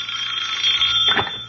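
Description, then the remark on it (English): A telephone bell rings steadily with a bright, continuous metallic trill, fairly loud, with a brief lower thump near the end and no voices. “Now, wait here in the hall, dear, while I answer the phone.”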